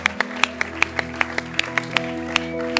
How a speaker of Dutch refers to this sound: Right now, I want us to put our hands together for Christ. En laten we nou gewoon Christus een groot applaus geven.